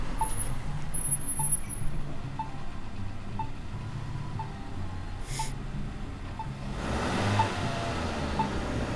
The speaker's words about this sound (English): And then he kind of like was telling the trash guy something about something and then just booked it down the road. This is probably him driving his car right now.